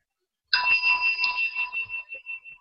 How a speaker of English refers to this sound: And now I will ring the bell and we will sit a little more zazen. Why do I ring the bell this way? Because that's how we ring the bell.